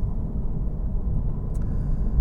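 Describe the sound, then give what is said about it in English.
A silver car's engine drones steadily in fourth gear at 3,200 RPM and 60 miles an hour, heard from inside the cabin: a constant, fairly loud low rumble blended with road noise, with no voices. “Fourth gear, 3,200 RPM, 60 miles an hour.”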